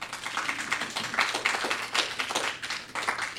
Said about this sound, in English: only in the 50s today, but the readers here tonight are turning the heat up with their amazing words. Let's have another round of applause for our readers so far.